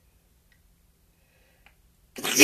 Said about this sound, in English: A few sneezes here today.